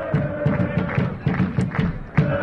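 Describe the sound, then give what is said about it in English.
Limerick football fans chanting together during a game on Friday night, a loud, steady crowd roar punctuated by rhythmic thumps or claps roughly every quarter second, with the massed voices blending into one continuous chant. “We've been talking about the atmosphere, and here's just a sample of some of it, some of the Limerick fans chanting away during the game on Friday night.”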